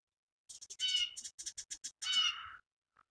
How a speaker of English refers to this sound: I really hope the podcast can pick up all this wildlife. Because the birds are skittering and shit like that. Yeah, the birds are soothing.